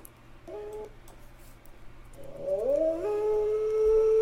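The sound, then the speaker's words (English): A wolf howl swoops upward into a long, steady, loud note after a brief fainter call near the start, set against a low background hum with no talking. “even starts off with that same wolf sound.”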